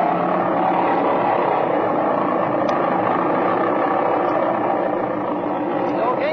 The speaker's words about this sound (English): Set your brakes, rev the engine up, see that it's hitting on both mags, and if it is, take her off.